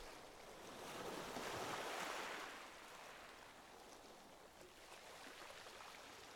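Ocean waves wash ashore in a soft, steady rush, with one fuller surge swelling and receding early on before a continuous hiss of surf carries on, without any voices.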